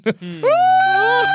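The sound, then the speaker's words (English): A person points and imitates a body snatcher screech from the body snatchers film: a brief vocal burst, then a loud, sustained, strained wail held steadily for about a second, with a nasal, bleat-like tone. “Can you just point and make a screech from your mouth?”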